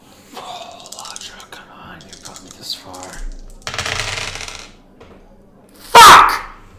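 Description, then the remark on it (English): Dice rattle in a cupped hand for about a second, a dense clicky shaking, then a loud sharp slap as they are slammed down during a dice game, making some dice jump. Quiet murmuring voices come before. “Just slaps his dice and they go, shh, roll a 12, the first fucking die!”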